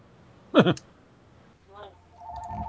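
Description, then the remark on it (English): A brief steady electronic telephone ring sounds near the end, a moderately loud tonal chirp, following short bursts of people talking and a low background hum. “Should we answer the goddamn phone?”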